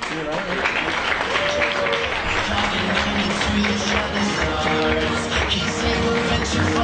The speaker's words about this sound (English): Again, we give another round of applause to our MAA 67.5 Founders Crown Ambassador,